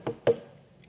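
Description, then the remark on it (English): Two quick knocks of the knuckles on a door, fairly loud, one right after the other, with a short hollow ring fading away afterward and no voices. “No, but rather it's a repeated rap of the knuckles, a pop of the knuckles are banging on the door.”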